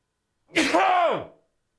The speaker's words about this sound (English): Hang on, I got to sneeze.